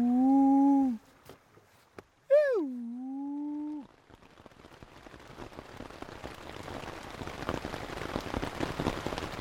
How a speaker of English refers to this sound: It's the end of the second week, and it's been pouring rain almost every night.